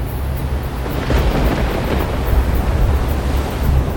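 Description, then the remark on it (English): Thunder rumbles low and steady through a loud, churning storm at sea at night, with lightning and a southwesterly wind driving waves against a ship's hull; a constant roar of wind and wash fills the background with no distinct breaks and no voices. “A wall of churning black clouds on the horizon, ablaze with lightning, towering to the heavens, smothering the new moon.”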